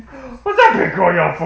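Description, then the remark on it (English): A female dog yawns right into the microphone, a loud, drawn-out whiny yawn that slides downward in pitch and lasts about a second, preceded by a soft murmur. “Did you hear that big girl yawn? What's that big girl yawn for me?”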